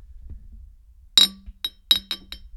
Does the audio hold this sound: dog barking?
no